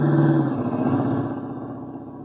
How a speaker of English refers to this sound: Duck, here comes the car.